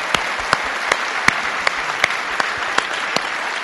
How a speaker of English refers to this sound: Can we give them one more round of applause, appreciation for their ministry?